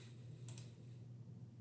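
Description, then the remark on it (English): Two quick, soft mouse clicks in close succession, clicking on an updated Thomas Jefferson School of Law web page, faint against a steady low electrical hum, with no one speaking. “So you should click on it. Clicking now.”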